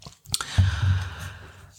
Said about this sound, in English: Sorry, I need a drink of water.